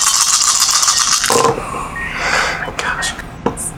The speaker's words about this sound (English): Do you need more dice? I could drop 20 on it, but I'm not going to.